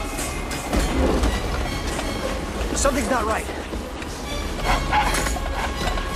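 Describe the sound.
A train rumbles steadily along its rails with a continuous low roar and faint clattering, while a voice speaks briefly over the mechanical noise.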